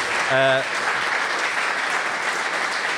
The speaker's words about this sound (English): That's a lovely round of applause, isn't it? Fantastic.